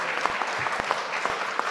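crowd, audience applauding

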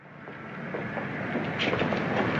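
vehicle, train running on rails

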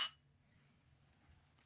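household object, glasses clinking

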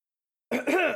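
human body sound, cough and throat clearing

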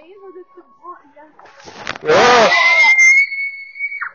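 human body sound, child screaming

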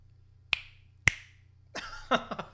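human body sound, finger snap

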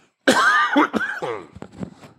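human body sound, coughing

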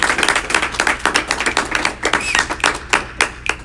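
crowd, people clapping

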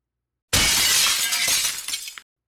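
sound effect, window glass shattering

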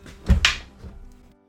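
household object, door being closed

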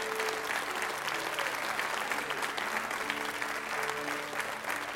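crowd, audience clapping hands

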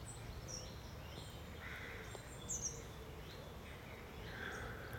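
bird, birds singing

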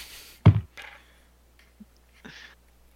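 household object, dice being rolled

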